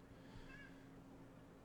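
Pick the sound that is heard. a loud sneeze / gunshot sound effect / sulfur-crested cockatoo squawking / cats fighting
cats fighting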